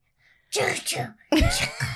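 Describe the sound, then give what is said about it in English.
A child's voice playfully imitates Elsa sneezing in the short Frozen movie Frozen Fever, two quick 'ah-choo' bursts in a row, fairly loud, with a brief pause between them. “What happens every time Elsa sneezes?”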